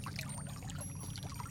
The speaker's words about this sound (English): As I climb the steps to the top of the hill where the monkey temple stands, I can hear the sound of flowing water. As I reach the top, I see that there is a large reflecting pool in the center of the complex with several smaller fountains and pools